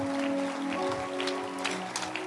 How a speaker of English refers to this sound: You have a beautiful church and a mega bishop. Clap for Bishop Ogo one more time.